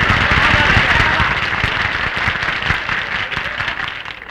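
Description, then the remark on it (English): A studio audience applauds steadily, a dense wash of many hands clapping at a loud, even level that tapers slightly toward the end. “Applaud me, folks.”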